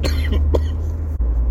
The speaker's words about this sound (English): sorry about the cough, I usually can catch it, but that one stuck up on me